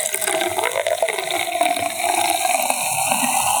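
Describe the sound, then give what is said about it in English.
A steady stream of bubbly from a freshly popped bottle pours into a glass, with a continuous fizzing, splashing rush and crackling bubbles throughout, and no voices. “So now we're each pouring a glass.”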